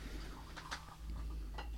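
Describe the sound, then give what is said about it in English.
A few quick, light clattering clicks of dice tumbling on a tabletop, rolled to see who goes first and second, a tight cluster followed by one more tap, fairly soft over a steady low background hum. “So you guys roll to see who goes first and second.”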